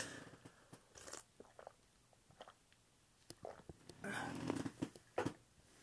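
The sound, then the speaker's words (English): Someone takes a quick sip of water: soft wet mouth clicks and small gulps scattered over a few seconds, then a denser burst of swallowing noise. No one speaks. “I'm going to take a little sip of water real quick because my voice is getting kind of dry.”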